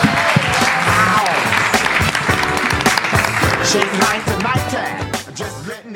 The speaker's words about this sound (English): Thank you all so much. One more round of applause for our panelists.